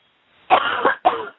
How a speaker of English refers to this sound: Now, we don't want you coughing. We want you talking. Let's go. If you can cough, you can talk.